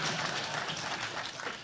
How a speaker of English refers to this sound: Yes, let's actually have some applause for basic math.